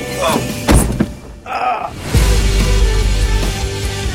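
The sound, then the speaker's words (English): In a scene from the 2009 film The Loved Ones, a door is shut for a prom date with a solid, low thunk, preceded by a couple of lighter knocks and clicks, then a steady low rumble continues for the rest of the moment. “Wow, you look wicked. Let me get the door, m'lady.”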